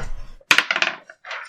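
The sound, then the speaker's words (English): Dice rolled for a wisdom saving throw clatter and tumble across a hard tabletop in a short burst of quick bounces, then a brief second rattle follows. The sound is fairly loud, with no voices. “Where's your dice at? I don't know. There it is.”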